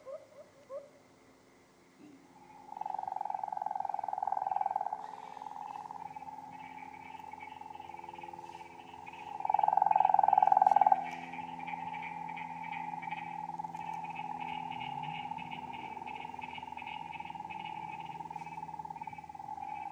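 A steady chorus of frogs calling, with a continuous trilling drone that swells louder in two bursts before settling back into a dense, unbroken background chorus. No one speaks.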